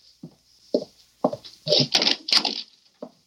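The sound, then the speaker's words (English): A door being opened: a few separate wooden clunks, then a busier stretch of rattling and knocking as it swings, with a faint steady hiss underneath. “See you at the door. No. It might be... I'll open it myself.”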